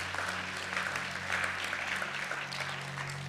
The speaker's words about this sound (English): Clap your hands and God desires you. He desires you.